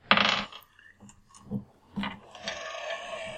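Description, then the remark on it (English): Dice are rolled across a hard surface for weapon damage, starting with a loud burst of rattling, followed by a few lighter clattering taps as they tumble and settle, with no voices. “Well, roll me some damage things on your weapon.”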